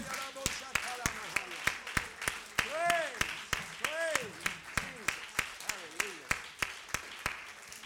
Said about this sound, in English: Clap your hands again unto the Lord.